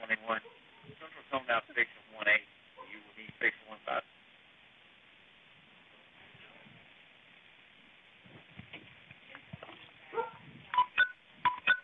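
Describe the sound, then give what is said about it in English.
Short electronic chirps of message notification tones from a man's phone pop up a few times over a muffled, narrow-band phone call with a dispatcher, mixed in with bursts of voices and a quiet hiss in between. “Yeah, that sounds like messages hitting his phone.”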